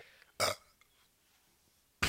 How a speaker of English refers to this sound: Oh, you burped.